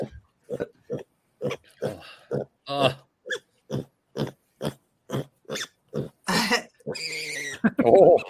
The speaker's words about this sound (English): You can't help but feel good. I want that as ambient noise instead of like ocean waves at night. I just want that. Just pig grunting.